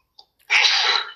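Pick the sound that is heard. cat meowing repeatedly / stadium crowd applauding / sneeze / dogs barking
sneeze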